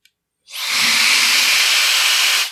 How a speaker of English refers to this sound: Wow, that's not your mother's blow dryer. It just sounds like rushing air. Yeah, I know. Sounds like a Dyson, like, I guess it is probably just a ripoff of the Dyson, but it's really nice. It's the Shark, I don't remember what it's called.